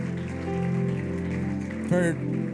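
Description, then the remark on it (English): An audience claps together as a hand clap of praise to the Lord in the evening, in a dense, steady patter like rain, with voices and a sustained musical tone underneath and a brief louder vocal exclamation near the end. “Let's give a round of applause or a hand clap of praise to the Lord this night and evening.”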